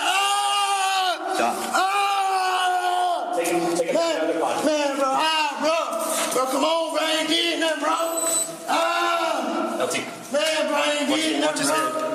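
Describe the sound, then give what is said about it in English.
A man screams and wails loudly and continuously while deputies restrain him in a courtroom, anguished cries rising and breaking over and over for about twelve seconds, raw, with other voices faintly mixed in. “That's the scream that echoed through the courtroom.”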